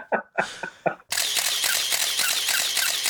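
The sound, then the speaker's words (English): Three separate camera shutter clicks, then a loud, rapid burst of shutter fire rattling on continuously for about two seconds, crisp and bright with no voices; the sound introduces Legacy Livestock Imaging. “Folks, you know what that sound means. It's Legacy Livestock Imaging.”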